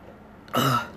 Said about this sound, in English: So, like, I am dying. I'm about to go get a drink of water right now, and I'm about to cough, like, no joke, so watch.